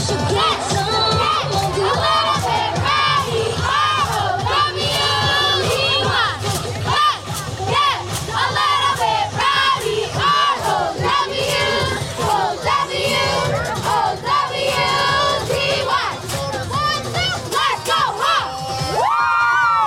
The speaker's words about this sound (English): Please give a warm welcome to the loudest cheer team in the MCSAO, the Brooke Hawks cheer team.